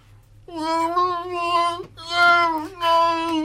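An infant wails in three long, strained cries, the first steady and high-pitched, the next two rising and breaking, with brief gasps between them and no other voices.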